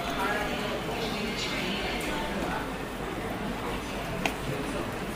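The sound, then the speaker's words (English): An escalator runs steadily in a metro station, a continuous low mechanical rumble with a faint rhythmic clatter of steps and one sharp click near the end. “So this is actually the escalator, but I'm sure I have the sound of me getting on the train too.”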